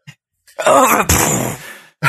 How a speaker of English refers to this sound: Oh, yeah. What was that? It was our great leader coughing. He's a very great leader.